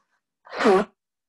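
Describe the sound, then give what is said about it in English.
A single short blow of the nose, about half a second long: a honking, slightly tonal burst mixed with breathy rushing air, fairly loud, with silence on either side. “I was blowing my nose a little bit.”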